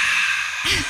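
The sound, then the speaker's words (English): A voice imitates a refreshed "ahh" after a drink: one short, breathy exhale, fairly loud, ending with a brief voiced lift. “Like this is not a Coca-Cola commercial.”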